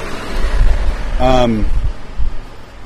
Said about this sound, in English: Just going to pause for these cars to go by.